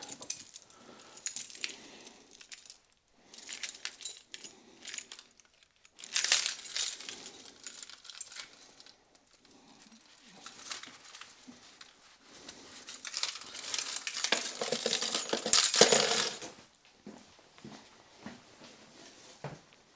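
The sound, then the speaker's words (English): Keys, including a back door key, jangle and clink in several bursts as they are gathered before a run, metallic and bright, with short quiet gaps between them and a longer rattling stretch near the end. No one speaks. “So I need running watch and my keys and gloves, and then we're good to go.”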